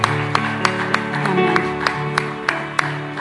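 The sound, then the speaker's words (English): A church audience claps together for the Lord in a steady rhythm, sharp unified claps about three per second, over sustained music with held organ-like tones. “Give the Lord a clap up. Dale un fuerte aplauso al Señor.”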